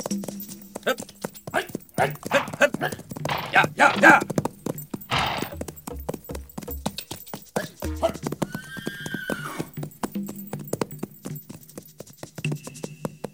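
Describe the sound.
Horses neigh and whinny while hooves clatter in a busy, uneven rhythm as men ride and maneuver them into a village, with men shouting urgent calls over the commotion.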